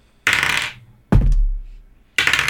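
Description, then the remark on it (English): Dice clatter across a hard tabletop in three quick bursts, each a rattling tumble that settles, loud with no voices, as the dice are rolled for initiative. “All right, I got a 15. Wow, my dice are not liking me.”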